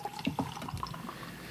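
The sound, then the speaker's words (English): A drink being poured into an 8-ounce glass, with a steady bubbling gurgle and a few brighter splashy blips over about a second and a half, no voices. “All right, pouring this motherfucker.”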